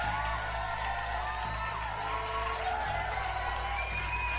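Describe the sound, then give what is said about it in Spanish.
A crowd applauds and cheers in a steady, dense wash of noise that holds at an even level for several seconds, with a few whoops rising above it and no one speaking. The applause introduces the anime of the week, Asobi Asobase. “Un pinche aplauso.”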